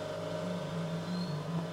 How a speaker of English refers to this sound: I got a leaf blower coming in. Coming in real hot. Oh, shit. Oh, I got a leaf blower coming in.